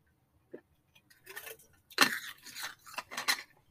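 Someone takes a swig of ice-cold water: a few light clinks and handling taps, then a run of quick, soft gulping and swallowing sounds, fairly quiet, with no talking.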